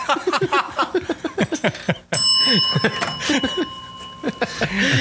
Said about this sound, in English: That wasn't even a truth bell. That was a timeout.